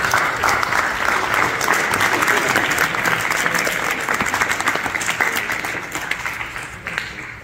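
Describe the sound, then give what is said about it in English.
Sustained applause from a large crowd at a dinner, given to the dinner committee, dense overlapping clapping at steady loudness that begins to thin slightly toward the end. “Can we all rise and give a round of applause to the dinner committee tonight?”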